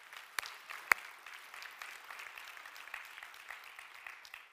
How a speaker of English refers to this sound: Somebody clap your crazy hands on a Sunday morning.